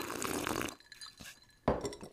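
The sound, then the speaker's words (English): Glasses clink together in a toast: a light tap, then a sharper, louder clink with a brief bright ring, following a stretch of soft rustling noise. No one speaks. “Okay, well, let's do a cheers and then a quick ASMR sip.”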